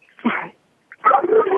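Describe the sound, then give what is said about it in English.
A dog whimpers in two short, strained bursts separated by a brief pause, the second one longer and more insistent, after seeing somebody outside; no one speaks. “One of your dogs wants some possibility, too.”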